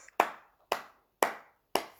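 Four sharp hand claps in a steady, evenly spaced rhythm, each crisp snap trailing off briefly before the next, with no voices or other sound between them.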